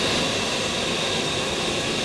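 airplane engine

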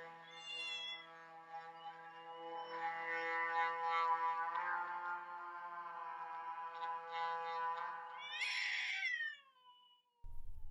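cat screaming

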